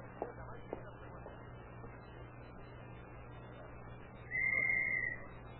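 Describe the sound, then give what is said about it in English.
A single shrill whistle blast, blown as a signal, steady and piercing, sounds for just under a second over a low constant hum, after a couple of faint thumps earlier on. “He went right through that glass door when you blew that whistle.”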